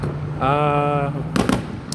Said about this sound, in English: Boom, boom, boom. Like so yeah, we're out here doing a live podcast, and we're seeing some very pretty fireworks.